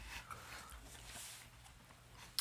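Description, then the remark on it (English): A low, rumbling growl from some creature, continuing steadily for a couple of seconds with a brief sharper sound near the end. “So, who's taking bets on what's making the growling sound?”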